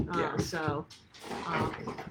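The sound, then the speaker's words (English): Excited dogs whimper and whine in high, wavering bursts, fairly loud, with a brief lull midway before the eager whining picks up again, as a door is opened to let them out of a room. “Everybody's too excited here. Gypsy, go. Rich just let them out, but he didn't shut the door”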